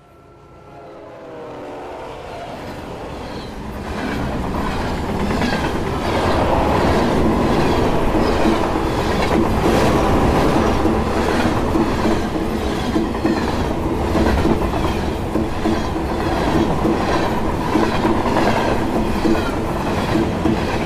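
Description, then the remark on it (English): The Ginger Street's East train, heading toward Mapelli, rolls steadily along the rails, its rhythmic clickety-clack building from a quiet start into a loud, continuous rumble that stays constant throughout, with no voices. “Players find themselves on the Ginger Street's East train heading toward Mapelli.”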